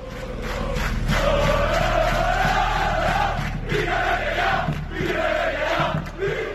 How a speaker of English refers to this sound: Well, I guess you only have to listen to the roaring of the fans and all of the chanting that we have over here in the background to try and get out Peter Lim out of Valencia. Over 15,000 fans were in attendance